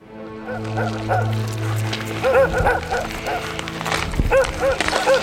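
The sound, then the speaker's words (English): A dog barks and yips in several quick bursts, fairly loud, with a low steady hum underneath during the first couple of seconds. “And why do you have a talking dog?”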